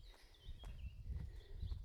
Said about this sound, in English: Hear my footsteps change when I'm running and walking.